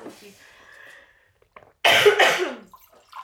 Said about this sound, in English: No, don't worry. Just cough. Let's have a coughing party.